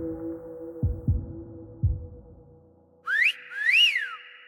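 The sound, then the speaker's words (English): Over a low hum and a few dull heartbeat-like thumps, a man suddenly lets out a loud two-part whistle: a quick upward sweep, then a longer rising-and-falling note, like a wolf whistle, as builders having lunch on a low wall gawk at a woman passing by. “Robert's mental rant is interrupted by a whistle.”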